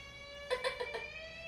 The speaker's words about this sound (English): Fire alarm!